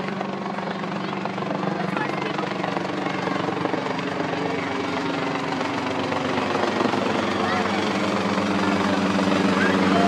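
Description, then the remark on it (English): A helicopter dropping ping pong balls over a packed crowd at a 2014 ball drop drones steadily for the whole ten seconds, its low rotor hum and engine roar holding constant and loud, with a murmur of voices faintly beneath. “The Derry Chopper Massacre”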